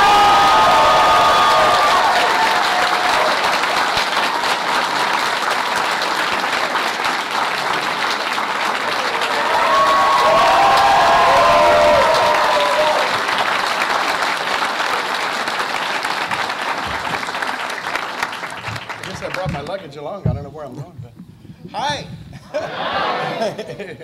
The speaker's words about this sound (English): So let's give a warm round of applause for Mr. Jim Cummings.